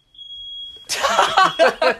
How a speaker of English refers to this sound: The fire alarm just went off. What happened? Should I bring the phone? Okay. Why did the fire alarm just go off? You never know what's going to happen here.